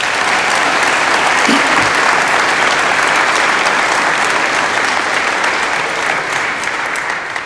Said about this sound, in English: He's on. Clap for him.